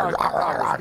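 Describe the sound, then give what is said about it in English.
A dog barks and growls, two loud, harsh bursts in under a second with a rough, throaty edge and no talking around them. “Yeah, that dog was awesome, though. That dog was loud.”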